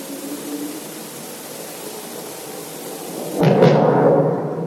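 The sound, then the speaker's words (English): A steady rushing roar is broken by a sudden sonic boom from a supersonic car as it moves forward, a sharp loud crack that swells into a deep rumbling wash before slowly fading. No voices. “You then start to move forward, and we should get the sonic booms in a moment.”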